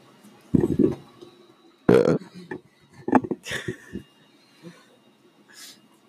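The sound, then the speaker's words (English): Two throaty burps erupt, a short one followed by a longer, louder one, then scattered murmurs, breaths and snorts as people react. “I burp on a regular basis.”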